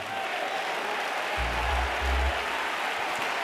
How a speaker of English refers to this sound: Hallelujah. Hallelujah. Remain standing all over the building. Clap your hands and shout again.